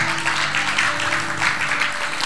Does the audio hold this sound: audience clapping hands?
yes